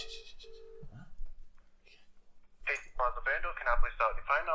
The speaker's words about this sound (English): I'm not ready. Okay, it's calling.